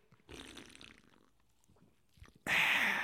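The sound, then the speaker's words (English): A Bucked Up Energy drink can, Miami flavor, cracks open with a sudden loud, sharp hiss of fizz that keeps going, after earlier softer handling and scraping noises. “Join me in cracking open the singularly best flavor of Bucked Up Energy, in my opinion.”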